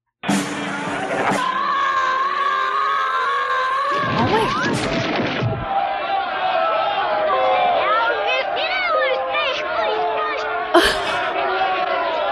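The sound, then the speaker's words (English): A dense, steady wash of crowd noise with garbled voices that sound played backward, broken by a sharp crash partway through and another near the end. “And, well, because it was in a bunch of crowd noise, and it happened twice.”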